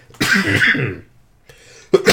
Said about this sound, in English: Excuse me, pardon my cough.